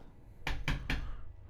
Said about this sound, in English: All right, cool. I'm going to knock on it whenever we're done. This is particle board. It's not real wood. It's particle board, dude. I already knocked on it, so.